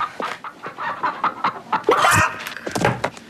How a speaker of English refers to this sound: And she turns it back. That chicken came back to life. Only to be instantly turned into back dinner. Into dinner again.